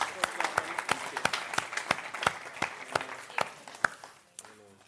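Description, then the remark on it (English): An audience applauds a couple celebrating their 50th, golden wedding anniversary, with a dense wash of clapping punctuated by steady, rhythmic sharp claps, then the applause fades out as a voice starts speaking at the end. “Can we give those guys a round of applause?”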